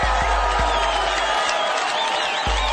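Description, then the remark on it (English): An audience at a live session of the Uncommon Woman Circle claps and cheers for themselves in a steady, dense wash of applause, with high whoops and shouts rising over the sustained clapping. “This is the point where you clap for yourselves.”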